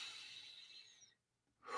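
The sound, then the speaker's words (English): A long, airy breath drawn slowly for about a second, then a short silence before the next breath begins. Soft, with no talking. “Take a deep breath, deep, deep breath.”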